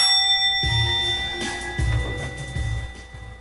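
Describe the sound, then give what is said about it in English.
A bright bell rings out and its tone hangs steadily through the whole moment, while a few dull low thumps land underneath it. No one speaks. “Ring the bell.”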